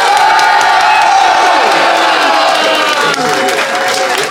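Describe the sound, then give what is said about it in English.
A studio audience bursts into loud, sustained applause mixed with cheers and whoops, voting for the team they think talked best on a show; a dense crowd roar that fills the whole stretch without a break. “But if you think Lou and Fanshawe, and of course James, came out on top, applaud now.”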